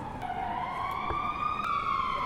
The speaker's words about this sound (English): A short while later, there was the unmistakable sound of an ambulance drawing up outside